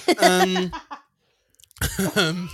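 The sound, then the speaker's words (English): Two loud bursts of harsh, voiced coughing separated by a short silence, each burst a rough cluster of hacking coughs like a small coughing fit. “oh, sorry, I had a coughing fit then.”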